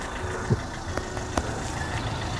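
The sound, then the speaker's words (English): A car drives by on a street, its engine and tire noise a steady rumble throughout, with a few brief knocks and clicks mixed in. No one speaks. “You are a bit of a fool with the cars.”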